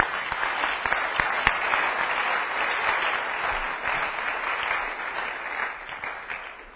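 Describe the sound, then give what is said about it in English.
An audience claps their hands in sustained, dense applause, a steady crackle of many overlapping claps holding loud throughout and easing slightly toward the end. “Are you clapping your hands for them?”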